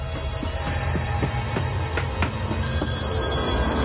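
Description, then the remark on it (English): A telephone bell rings loudly and steadily, its rapid metallic strikes clattering over a low rumbling background, with no one speaking. “Answer the phone. Answer the phone.”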